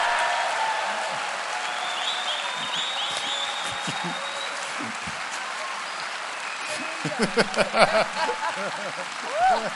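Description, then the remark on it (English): A standing crowd applauds steadily with a dense wash of clapping, welcoming a group of ladies as they come out, while cheers and excited voices rise over it and grow louder in bursts toward the end. “Let's cheer it, cheer it, cheer it.”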